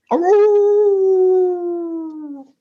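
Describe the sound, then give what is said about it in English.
A voice imitates a dog with one loud, drawn-out howling note lasting about two seconds, sliding slightly downward in pitch before fading out, with no talking around it. “Yep, you're back to having the better bark as well.”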